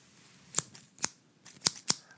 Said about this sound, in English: Why do you have kindergarten scissors? I have 3 pairs of scissors.